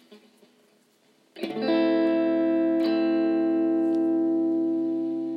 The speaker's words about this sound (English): And now to play us out on this, our 7th get-together, I'll play a little electric guitar. This is a short and sweet instrumental piece that I hope you enjoy.